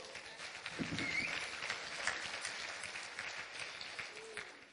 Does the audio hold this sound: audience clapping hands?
yes